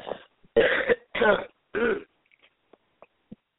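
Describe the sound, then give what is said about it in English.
A loud run of harsh coughs and throat-clearing from a person with a sore throat and a cough, four rasping bursts in quick succession, followed by quiet with a few faint small noises. “So now I have the sore throat. I have just a cough.”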